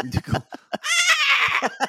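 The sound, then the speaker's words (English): A single drawn-out, wavering goat bleat, loud, apparently voiced by a person imitating Pyotr, a devil goat character, following a few short vocal bursts and trailing off into brief murmurs. “And I was like, there goes Pyotr, the devil goat.”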